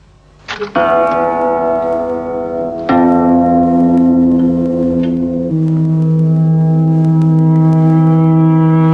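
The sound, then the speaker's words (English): A reversed tape note spliced into a sequence: the last note is cut from the tape, turned round and joined back in. Three sustained, rich pitched tones are joined end to end with abrupt cuts, the first swelling up from quiet, then holding steady and loud, with no talking. “Now I can take the end note, turn it the other way round, and put it back.”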